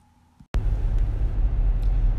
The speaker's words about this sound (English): We're driving. We have a dog on our lap. We'll see how this goes.